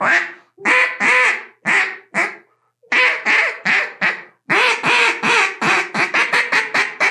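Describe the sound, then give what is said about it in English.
A duck call blown, loud raspy quacks in short groups, pausing briefly, then a rapid run of quacks that speeds up toward the end, with no talking. “I'm going to blow a duck call every time you say something that has a lot of substance to it that makes sense.”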